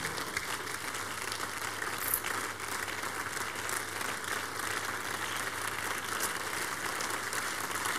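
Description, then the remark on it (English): A standing audience at a church revival service claps steadily in praise to the Lord. It is a dense, continuous wash of many hands applauding at an even loudness for several seconds, with no voices standing out. “Give the Lord the biggest clap of praise.”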